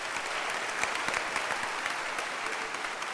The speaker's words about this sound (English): The mothers. Clap for the mothers.